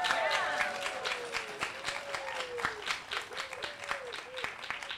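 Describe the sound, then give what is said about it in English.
An audience claps steadily and densely for several seconds, a continuous patter of many hands with a few sharper individual claps standing out and some scattered whoops rising above it. “All right, a little more clapping. I like to hear some clapping.”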